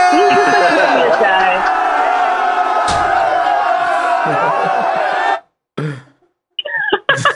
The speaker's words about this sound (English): What's that cheering from? Oh, yeah, we're pumped on it.